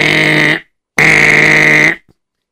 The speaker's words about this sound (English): And sure enough, they came knocking on the door, ringing a bell.